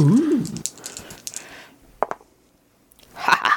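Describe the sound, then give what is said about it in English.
A quick clatter of bubblegum dice rolled across a tabletop for a persuasion roll in a game, a handful of sharp clicks settling into a final tap, with brief vocal sounds just before and after. “We're gonna use the bubblegum dice.”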